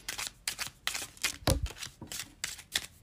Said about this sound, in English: I have to shuffle them in two batches because there's just so many of them.